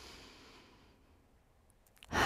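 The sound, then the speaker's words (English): A deep, slow breath sighs out and fades into near silence, then a strong, airy inhale starts abruptly at the end. No talking. “Take deep, purposeful breaths.”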